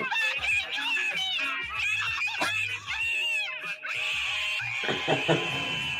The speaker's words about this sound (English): Literally screaming, "Re!"